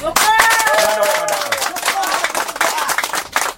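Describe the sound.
An audience claps steadily for several seconds, a dense crackle of many hands, with a raised voice calling out over the start of the applause.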